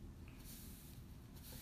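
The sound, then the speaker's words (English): Two short, airy spritzes of rubbing alcohol from a spray bottle in a living room, preparing skin for a first tattoo, the first longer and the second a quick burst, over a low background rumble. Both are fairly soft. “First thing that we're going to do is spray you with some of the alcohol. Well, spray this with some alcohol.”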